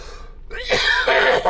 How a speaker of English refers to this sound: I get this post-nasal drip. Left rear, back of my throat. I can feel it dripping down out of my sinus. And I can't stop it. And it just pisses me off. And that's basically 90% of my coughing here.